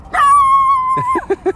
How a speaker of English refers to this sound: I like that one, though. Little black and white dog. Looks a bit spaniely. Bit spaniely, Jack Russell-y. But, hey. Oh, there we go. He's having a bark. It's a little Jack Russell.